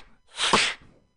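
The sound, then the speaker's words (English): A single inward-breathing beatbox sound: a loud, hissy, sharply rising inhaled burst lasting about half a second, with a brief tonal squeak in the middle and no talking around it. “Or like inward sounds, so like you can make sounds by breathing in, like,”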